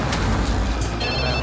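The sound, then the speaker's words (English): A phone rings with high, bright tones over a steady, noisy rumble, like being inside a moving vehicle. No one speaks. “And this is the opportune time for my phone to ring.”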